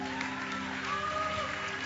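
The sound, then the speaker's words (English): An audience claps hands for the testimonies heard that morning, a steady, dense wash of applause mixed with crowd voices and sustained tones humming underneath, holding an even level throughout. “Wow, you can clap your hands much, much better for the fantastic testimonies that we have heard this morning.”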